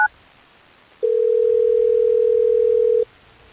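A telephone call placed by the radio station Hot 101.5 to a listener rings out: a quick pair of keypad beeps, then a single steady two-second ringback tone over a quiet line, clear, with no one speaking.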